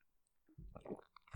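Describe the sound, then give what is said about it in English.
A brief mouth sound of someone taking a sip of wine from a glass: a short, wet slurp with a soft swallow, quiet and heard on its own. “Another sip of wine.”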